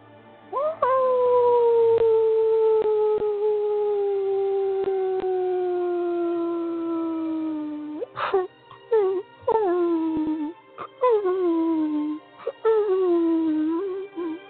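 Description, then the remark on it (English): Wolves howl: a long, drawn-out howl slowly sinks in pitch for several seconds, then gives way to a series of shorter howls that rise and fall, loud with no talking. “You and your brother continue to howl one more time, as loud as you need to.”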